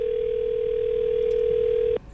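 A telephone rings on an outgoing call: one steady, clear ringback tone holds for about two seconds and then cuts off abruptly, with no voices.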